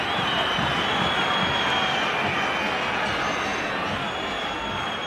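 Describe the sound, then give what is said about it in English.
A huge football stadium crowd whistles and heckles after a shot goes high over the goal, roaring continuously, with sustained high whistling cutting through a dense wall of jeering voices, loud and unbroken throughout. “And this is when the crowd just starts whistling and heckling.”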